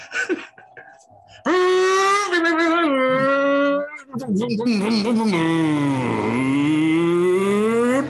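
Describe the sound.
A voice imitates a race car engine, a sustained buzzing drone that rises and falls in pitch like shifting gears, followed by a wavering, revving stretch that dips low and climbs again.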